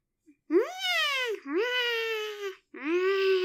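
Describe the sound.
A voice imitates the screams of the giant rabbits being electrocuted at the end of a movie: three long, wavering, high-pitched wails with a crying, strained quality, each held about a second with brief gaps between, loud and alone.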